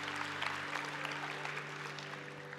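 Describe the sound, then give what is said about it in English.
A large indoor crowd at a Sunday church service claps and cheers steadily for the children and youth as they head out, a dense wash of applause with scattered whoops that holds at a constant level throughout, with a faint steady hum underneath. “Give them a big cheer as they go.”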